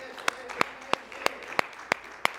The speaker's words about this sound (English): Amen. Come on and give him another hand clap, please.